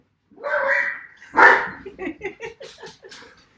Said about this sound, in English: So much so that you can't even say the word squirrel. No. If you say it, he starts this high-pitched bark. Let's see if we can do it.